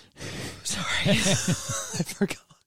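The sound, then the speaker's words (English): A tired woman gives a long, breathy yawn with a wavering voiced groan running through it, fairly loud, trailing off into a few short exhaled breaths at the end. “She's a tired, human. She yawns.”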